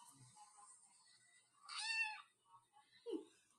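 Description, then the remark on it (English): A single drawn-out cat meow, high and tonal, rising then falling, heard fairly faintly, followed by a brief soft thump. “That's for the cat. Yeah, that's for whoever that. It's true, whoever the cat is.”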